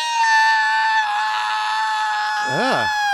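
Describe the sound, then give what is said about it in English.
A person imitates the loud, sustained high-pitched screech made at football plays such as a first down or an incomplete pass, piercing and steady, ending with a wavering warble near the end; shrill, no other talk. “They would screech at a first down, at an incomplete pass.”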